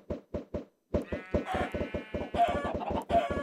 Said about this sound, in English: Are you killing chickens with snowballs?